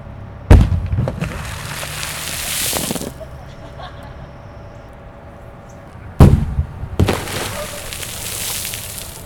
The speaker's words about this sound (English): If you're listening to this at a high volume, be warned. Coming up are three of the explosions. Fire in a hole. I hope this one's gonna work. It's a real smoker.